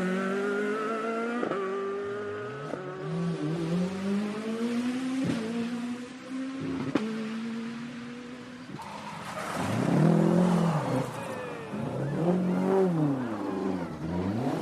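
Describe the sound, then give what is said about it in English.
A Ford Escort rally car, driven by Phil Collins from Wales, screams through several quick gear changes as it approaches on Stage 6 at Ballynoe, then roars past loudly with a swelling, rough rush of sound; no one speaks. “Here's the first of the escorts.”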